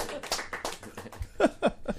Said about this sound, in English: I think we should have a round of applause for that, too, eh?